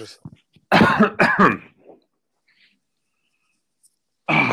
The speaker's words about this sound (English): Excuse me. I'm gonna cough for a second.